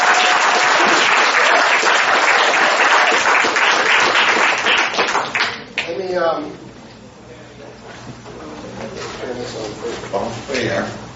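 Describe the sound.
An audience breaks into loud, sustained applause for several seconds, then the clapping fades out as a man begins speaking over a quiet background hum.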